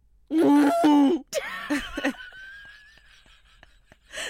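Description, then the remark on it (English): A voice imitates a hiccup with exaggerated noises: a loud, strained vocal squeal, a sharp gulping burst, and choppy voiced sounds, followed by a thin high whine that fades into faint clicks. “I don't think that's what it sounds like when she hiccups.”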